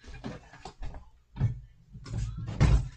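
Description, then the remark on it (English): A door is handled and pushed shut: scraping, rattling movements followed by a couple of dull thuds, with no one talking. “Had to close my door right quick.”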